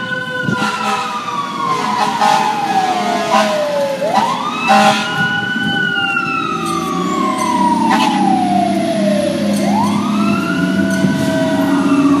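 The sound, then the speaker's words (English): A fire truck siren wails loudly in long rising and falling sweeps over the deep rumble of a heavy engine, continuous throughout, as fire trucks pass by responding to buildings on fire. “Here we go, fire truck.”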